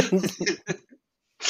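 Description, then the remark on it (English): A fairly loud burst of harsh coughs runs together for under a second, then after a short silence one more rough cough breaks out. “Sorry, I had to mute because I was coughing.”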